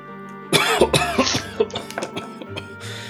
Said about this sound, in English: As you take the gag off him, Della, he coughs sort of quite heftily,